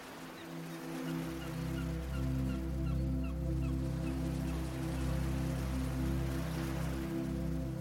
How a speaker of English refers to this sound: Jenny woke slowly to the distant cries of seagulls and the feeling of the warm early morning sun resting on her face.